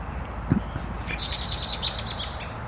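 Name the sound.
american robin calling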